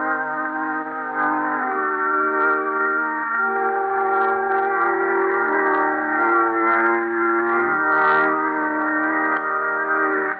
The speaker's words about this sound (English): In the parlor of a London lodging house, Smith is playing on a small harmonium, waiting for the bride he married yesterday.